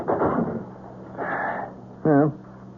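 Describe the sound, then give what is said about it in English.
A front door opens with a short, loud squeaky creak near the end, following a couple of muffled rustling, shuffling bursts as people come inside. “Come on in. Door's open.”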